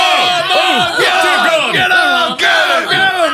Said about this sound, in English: I know where his house is. Let's go to it, all of us, come on! Mob!